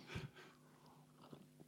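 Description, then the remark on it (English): A brief, quiet sip of a spritz drink, with a soft slurp and swallow followed by faint mouth noises, and no talking. “Sorry, a little sip of spritz.”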